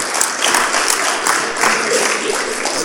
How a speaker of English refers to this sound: Yeah, give him a clap.